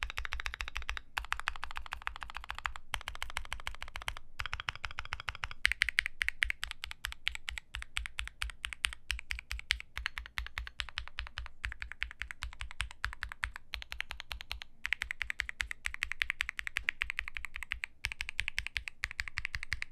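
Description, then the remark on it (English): Steady, fast typing on an Alice-layout mechanical keyboard fitted with a 9009 keycap set, a dense stream of crisp clicky-thocky keystrokes with no talking, continuing evenly for the whole stretch with only brief pauses. “I wish every keyboard I owned sounded like this board. I don't even think the recorded sound test does it justice.”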